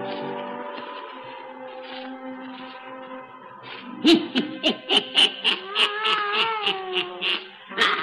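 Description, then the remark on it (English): A black cat named Satan gives a long, drawn-out yowl, then breaks into a quick run of short, rhythmic meows and cries, fairly loud, with no talking. “Weird, blood-chilling tales told by old Nancy, the witch of Salem, and Satan, her wise black cat.”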